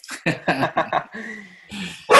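puppy barking

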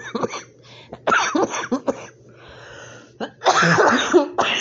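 coughing

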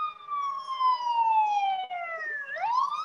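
ambulance siren passing by

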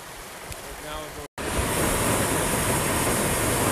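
babbling brook flowing water

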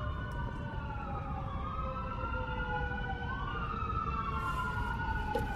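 emergency vehicle siren

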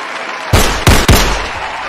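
gunshot sound effects

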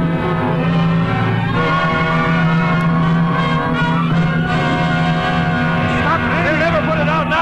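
car engine driving off

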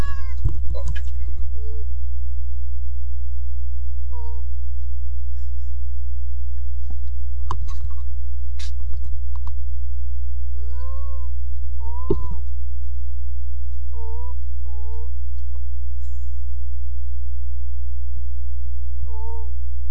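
cat meowing

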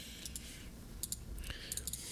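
computer mouse clicking

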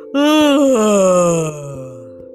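a long yawn

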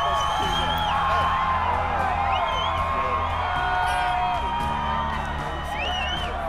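big crowd cheering

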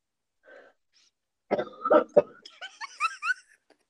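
coughing

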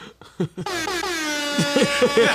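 air horn blast

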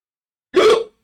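hiccups

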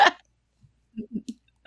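hiccup

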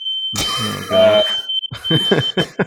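fire alarm going off

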